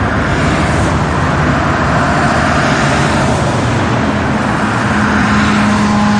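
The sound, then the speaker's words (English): Steady roar of cars rushing past over a bridge beside the Watsonville wetlands and Watsonville Slough, a continuous loud wash of tire and engine noise with a low hum, no voices. “a bridge where cars rushed at about 30 miles per”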